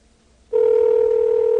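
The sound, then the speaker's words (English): After a brief moment of quiet, a telephone dialing tone comes on and holds as a steady, loud electronic hum through the end, with no voices. “His phone.”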